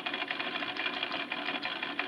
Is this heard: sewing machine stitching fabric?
yes